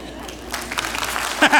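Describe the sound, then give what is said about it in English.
An audience breaks into scattered applause for a pastor's preaching that thickens into steady clapping, moderately loud, with a voice cutting in briefly near the end. “Here he's begging for a clap.”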